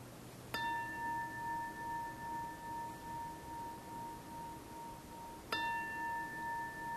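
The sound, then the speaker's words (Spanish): A meditation bell is struck twice, about five seconds apart, each strike leaving a clear, steady ringing tone that hangs and slowly fades. No one speaks. “Cuando suene la campana, deja los ojos cerrados y ábrelos solo cuando ya no escuches nada, nada de sonido, nada de reverberación de la campana.”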